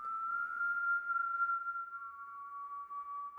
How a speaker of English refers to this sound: It was the sound of whistling on the floor above. Eerie and sweet it rose, not carrying any tune, but piping shrill and melodious.